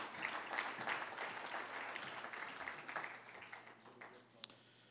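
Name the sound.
audience clapping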